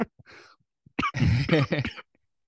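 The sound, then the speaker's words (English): A short fit of coughing from someone a little under the weather: a breathy rasp, then a sharp hack followed by a rough, throaty run of several quick coughs, loud and voiced, with no talking. “Oh, sorry. Coughing.”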